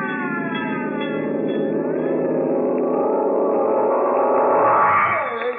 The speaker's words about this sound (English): Now what? That's the fire bell.